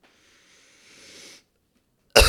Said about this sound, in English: It makes me fucking cough.